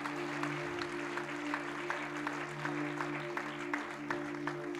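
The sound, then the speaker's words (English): An audience applauds as a woman comes out to the front, a dense wash of clapping with a loose, steady pulse running through it. A sustained low hum or chord holds underneath the whole time, and nobody speaks. “Let's give her a big clap as she comes out to the front.”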